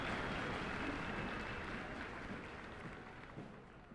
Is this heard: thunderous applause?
yes